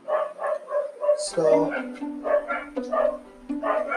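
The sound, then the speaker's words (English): Dogs bark repeatedly in quick, uneven bursts, loud, with a few higher yips mixed in and a low voice murmuring underneath. “So if you guys are hearing my dogs, if you guys are hearing barking, they're my dogs.”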